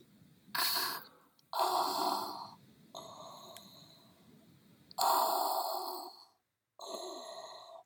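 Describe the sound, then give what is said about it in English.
A voice imitates heavy mechanical respirator breathing, alternating loud hissing inhales and exhales in a slow, steady rhythm, with no speech. “I'm going to attempt this with the caveat, the breathing will sound good and the rest will suck.”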